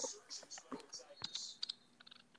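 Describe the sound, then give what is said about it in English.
Rapid, irregular keyboard typing, a steady patter of crisp key clicks with a few sharper taps, moderately quiet. “I'm typing.”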